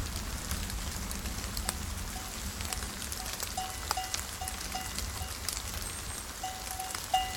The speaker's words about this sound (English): And down below it wasn't even raining, but now...